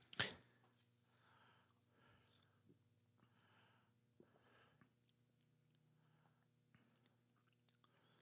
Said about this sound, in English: Takes a sip.